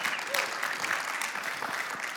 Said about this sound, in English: I'm going to play this back for my kids sometime because people clapped when I danced.